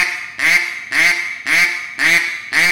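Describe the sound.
Five flat, raspy, loose quacks blown on a duck call with no pressure, in a steady, evenly spaced rhythm, loud, with no voices.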